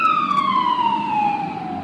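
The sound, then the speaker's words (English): A loud emergency vehicle siren goes by, its steady tone sliding gradually lower in pitch as it passes, over a low rumble of road traffic. “Okay, they're not looking for me, so that's not my ride home.”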